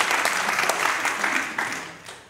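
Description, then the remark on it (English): A church audience claps in a dense, steady burst of applause that holds strong for about two seconds, then begins to thin and fade toward the end. “Yeah, you can clap.”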